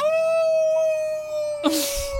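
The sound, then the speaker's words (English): A wolf howls in one long, steady, sustained note with a bright, ringing tone, accompanying a transformation into a wolf creature. Near the end a sudden rush of hissing noise breaks in beneath it. No one speaks. “It's a prisoner of Azkaban, like transformation into a wolf creature.”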